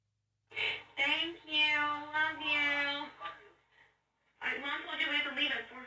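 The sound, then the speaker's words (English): Two drawn-out, wavering cat meows from a cat at the door, the first long and whiny, then a short pause before a second insistent meow, with no other sounds around them. “You know, he's at the door. Meow. That's the first time he's ever done that.”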